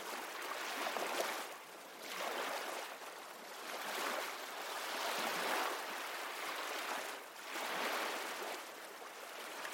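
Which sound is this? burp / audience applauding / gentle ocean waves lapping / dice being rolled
gentle ocean waves lapping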